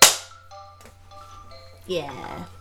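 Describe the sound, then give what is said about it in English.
A single sharp hand clap, made on a count of three, snaps out loudly at the start and quickly fades, followed by a faint steady electronic tone and a brief murmur of voices. “clap after three. One, two, three.”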